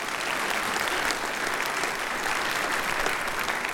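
An audience gives a steady round of applause, many hands clapping in a dense, continuous wash of sound at an even loudness throughout, with no voices rising above it.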